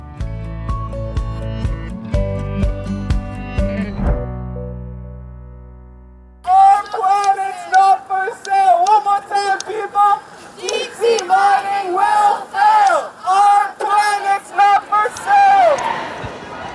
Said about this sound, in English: Those are the sounds of protesters outside the International Marine Protected Areas Congress gathering in Vancouver, speaking out against deep-sea mining.